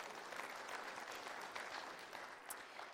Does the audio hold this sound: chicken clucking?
no